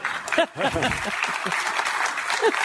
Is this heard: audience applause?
yes